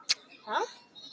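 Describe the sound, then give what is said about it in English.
A short sharp click, then a single brief, wavering goat bleat with a shaky, quavering tone, fairly quiet and heard on its own with no talking. “It's a goat.”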